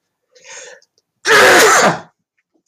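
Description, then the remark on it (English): A quiet intake of breath followed by a single loud sneeze that bursts out and fades within about a second, with silence around it. “It's making me sneeze already.”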